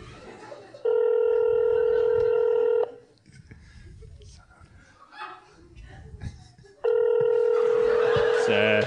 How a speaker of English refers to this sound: Please pick up the phone. Oh, my phone's ringing. Come on.